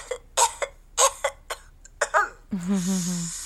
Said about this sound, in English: That's not a COVID cough, is it, Mum?